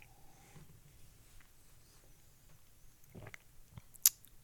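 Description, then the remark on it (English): Someone sips whiskey with a little water added: quiet, wet mouth sounds build to a soft slurp, followed by a sharp little lip smack near the end. No one speaks. “Oh, you're sipping.”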